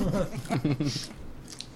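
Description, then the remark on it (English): Chewing of crunchy food with a few crisp crunches, mixed with muffled voice sounds as someone eats, then quieter mouth noises and a couple of sharp bites near the end. “I suppose I could, like, serve non-crunchy foods, but...”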